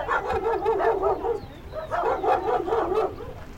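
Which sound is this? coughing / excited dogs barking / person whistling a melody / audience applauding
excited dogs barking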